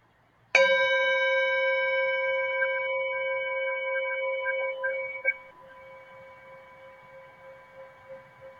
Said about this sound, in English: So we'll just begin with this beautiful bell.